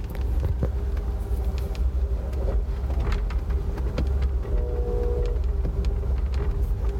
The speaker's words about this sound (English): Kind of fun to hear the train, huh? That other noise you heard was the train again going too fast. Whew, slow down, bud.